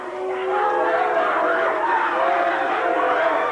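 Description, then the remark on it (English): A large crowd boos a man again, a thick, sustained wall of many voices that starts quickly and stays at a constant loud level throughout. “Crowd now booing him again.”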